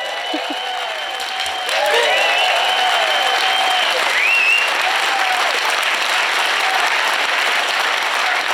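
A crowd breaks into steady applause that swells after a couple of seconds and keeps going loud and even, with a few whistles and cheers rising above the clapping.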